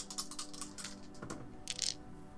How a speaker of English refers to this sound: I think I have 3 dice to throw at that.